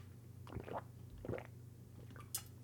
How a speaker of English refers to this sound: So might as well just take a big ass swig of water because the Hollywood Reporter's coming through for us.